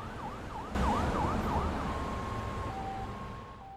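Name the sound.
ambulance siren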